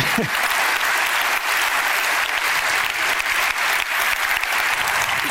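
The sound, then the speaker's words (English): An audience applauds steadily after hearing that a Kentucky Derby superfecta prediction was right, a dense, loud wash of many hands clapping at once that holds evenly for several seconds without any talking. “I don't know if I'd clap that fast.”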